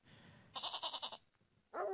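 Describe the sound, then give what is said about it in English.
A voice imitates a billy goat's bleat: a loud, wavering, pulsing cry of about half a second, a short pause, then a second bleat starting abruptly near the end, alone. “And you'd hear that goat just going off.”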